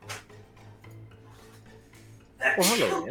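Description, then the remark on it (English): A single loud, sharp sneeze bursts out near the end, after a stretch of quiet hum with faint clicks. “Bless you. They said bless you.”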